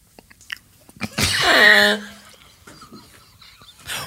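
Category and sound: human body sound, person chewing food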